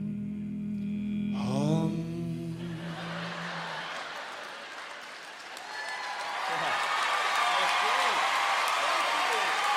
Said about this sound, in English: Put it in the key of B. Key of B, be nice. Actually, I think we did it in B flat, but I'll give you a B because I'm sure you guys will flat it yourselves, so we can go ahead. Okay, just a nice, nice hum. Okay, ready? Hum.